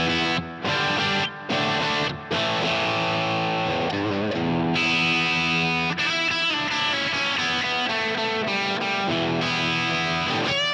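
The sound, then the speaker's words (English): Overdriven electric guitar on its bridge pickup, driven through a Line 6 HX Stomp with a crunchy, Marshall-style amp tone, plays loud chords and riffs, with a few brief stops early on before sustained, harmonically rich strumming and single-note lines. “Here's the bridge pickup. All the kind of amp sounds I'm driving through a Line 6 HX Stomp. Here's a Marshall-y kind of thing.”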